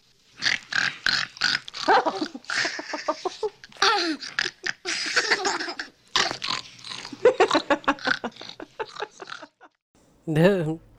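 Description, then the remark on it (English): A person grunts, snorts and snuffles in an imitation of pigs eating at a trough, a dense run of choppy, breathy noises with brief pauses, ending in a higher squeal-like burst. “Now, show me how the piggies eat. This is your trough.”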